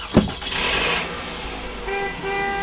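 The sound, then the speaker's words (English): A sharp thud, then a car engine revving and pulling away, followed by two loud, steady horn honks near the end. “This car is going for a wild ride.”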